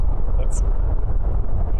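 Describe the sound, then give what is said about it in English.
Storm wind howls outside in a loud, unbroken roar, its weight in a deep low rumble, with a brief thin whistle rising above it partway through. “The storm's hit, and I think we're going through the worst of it. The howling outside.”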